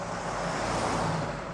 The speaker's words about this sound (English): So the two men just continued running out of the garage, out onto the street, down the road to their car. They hopped inside, they fired it on, peeled out, and sped off down the street.